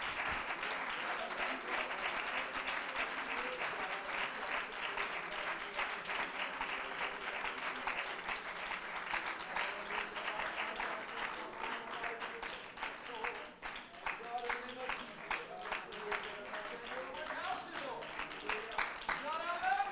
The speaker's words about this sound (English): Would you put your Bibles down and just give God a round of applause for His mercy and grace and the power of the Holy Ghost? Can we just love Him?